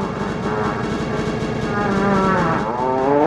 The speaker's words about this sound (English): Where'd you find that fart sound from? Amazing. Well, if I told you, it'd be embarrassing for me, so I'm not going to tell you where I got that fart. I'll let it be. It was real, wasn't it?